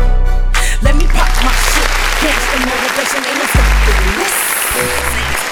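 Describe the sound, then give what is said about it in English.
Applause, explosion and siren sound effects: dense, loud applause runs throughout, punctuated by deep booming explosion blasts near the start and midway, with a wavering siren tone rising and falling beneath the clapping. “Y'all already know your girl got all three of them. She got the applause, the explosion, you know what I'm saying? And she got the siren.”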